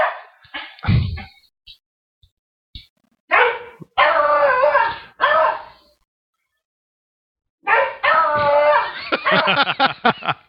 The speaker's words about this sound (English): I don't even see what they're barking at. Barking at Bo. The other dog? Yeah. He's gone. He's in the front yard now. They'll shut up.